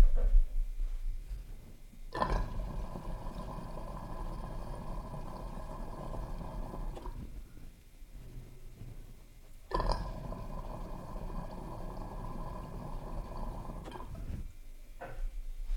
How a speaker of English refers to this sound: All right, so you're gonna see a lot of water and bubbles dumping down these drains. This thing moves a lot of water.